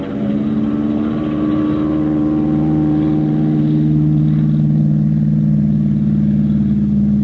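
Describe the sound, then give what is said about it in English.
An airplane engine revs up for takeoff as an enemy plane comes down, a loud, steady low drone with layered humming tones that swells slightly and holds its roar throughout, with no voices. “An enemy plane coming down to get you! Take off! Take off!”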